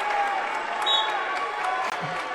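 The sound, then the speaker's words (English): A large crowd at a state championship wrestling match stands up and roars and cheers continuously, a dense wash of voices and scattered applause at steady, fairly loud volume throughout. “Modern day crowd stands up, cheers.”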